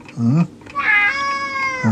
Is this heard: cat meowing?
yes